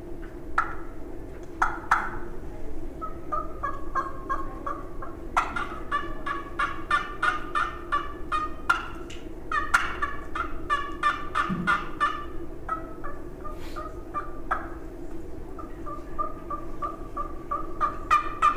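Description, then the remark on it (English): Repeated turkey gobbles and clucks made on a diaphragm call to sound like more than one turkey, coming in bursts of rapid, rattling notes over a steady low background rumble, with no talking. “So if I can sound like more than one turkey, I'll do it. And that's on anything, diaphragm.”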